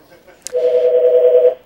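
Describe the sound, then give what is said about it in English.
A telephone sounds: a sharp click followed by a single steady electronic tone lasting about a second, fairly loud and clear, with no one talking over it. “I'll wait for that phone to stop.”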